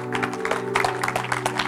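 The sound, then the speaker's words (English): A standing church audience claps their hands for the Lord Jesus in a dense, steady burst of applause, with a sustained organ-like chord droning underneath and no clear voices. “Give the Lord Jesus a hand clap.”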